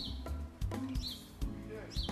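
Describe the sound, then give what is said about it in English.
Outdoors, a bird chirps in short, bright bursts about once a second, three calls in all, over a steady background hum with faint, low voice-like murmuring. “Bird sounds are real.”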